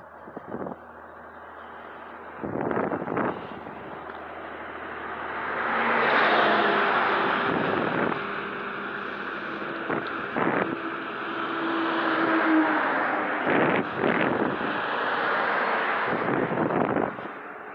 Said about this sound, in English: So, boy, a lot of cars.